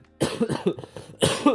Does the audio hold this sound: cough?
yes